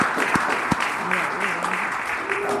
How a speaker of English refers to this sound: So, yeah, go ahead and give them a big round of applause.